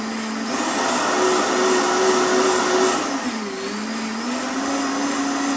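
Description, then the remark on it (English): A Vitamix countertop blender runs steadily at high speed, blending one tablespoon of ghee with one tablespoon of MCT oil: a loud continuous whirring roar with a humming motor tone that dips briefly in pitch midway, then settles and carries on. No one speaks. “I took one tablespoon of ghee, and I took one tablespoon of MCT oil, and I'm blending it in my Vitamix.”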